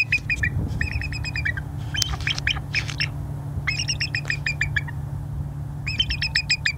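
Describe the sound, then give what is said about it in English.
A bald eagle calls in several bursts of thin, high, rapid chirping notes, each a quick stuttering series, with a steady low rumble of background noise underneath. “It's a bald eagle. Sounds kind of weak, right?”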